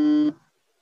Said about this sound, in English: There was like a beeping noise. I wasn't sure if that was coming from you.